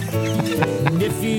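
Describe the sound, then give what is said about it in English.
A person warbles in a quick, wavering run of whistly, chirping vocal notes, imitating a warbler's song. The sound is loud and continuous, with no ordinary speech. “We got … over here warbling.”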